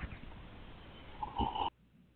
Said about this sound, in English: I love that sound. I don't know why. I don't like when people slurp, period, but I just love that sound effect. I think I just like sound effects.